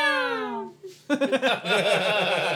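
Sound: cats fighting outside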